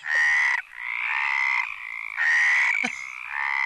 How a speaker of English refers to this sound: Right, here's frogs having sex. Hold on.